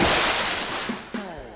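A loud, hissing wash of splashing water, a sound effect in a K-Talk Media 1640 AM radio station promo, that gradually fades, broken by a few sharp splashes near the end. No voices are heard.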